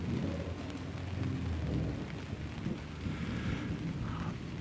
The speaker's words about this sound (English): It's raining. I might get hit by lightning. I mean, listen to this.